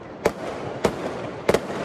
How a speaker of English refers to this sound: It sounds like the 4th of July in June. And it's like cannon fire back and forth for hours. It sounded like it could have been in a war zone. It's very worrisome. Wild fireworks are now a nightly event across the USA.